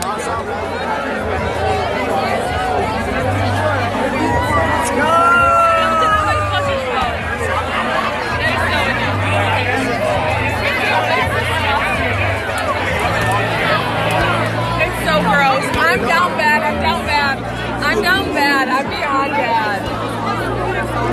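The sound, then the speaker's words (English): Dense party crowd chatter at the Splash Bash at 3:37 a.m. fills the whole stretch, many overlapping voices blending into a loud, steady babble with occasional louder calls and laughs rising above it. “Okay, we're at the Splash Bash right now at 3:37 a.m.”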